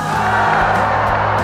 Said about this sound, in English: And the crowd exploded.